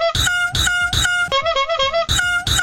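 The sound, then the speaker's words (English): A peacock's loud, nasal honking mating call repeats in quick bursts, with a longer wavering honk in the middle, clear with no voices. “It sounds like peacock mating, but this was definitely a peacock mating noise because we watched a video. Just a quick honk.”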